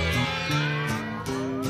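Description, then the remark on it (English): A group of voices imitates a cat's meow in drawn-out, wavering tones, several overlapping calls in a row, loud, with a steady background of sound underneath. “Give me a meow, go.”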